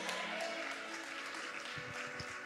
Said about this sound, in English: When you clap and when you get excited, you are celebrating life.